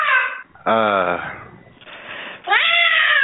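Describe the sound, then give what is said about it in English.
A cat meows loudly, three drawn-out, wavering calls with short pauses between them, the last rising into a strained, whiny cry. “Because the cat has to leave. You can't keep the cat.”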